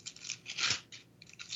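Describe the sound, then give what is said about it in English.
The thin pages of an actual paper Bible, wrinkly and missing large portions, rustle and crinkle in several quick, dry bursts, with one longer swishing sweep in the middle. The sound is fairly soft, with no voices. “Oh, paper, huh? That's the one. An actual paper Bible.”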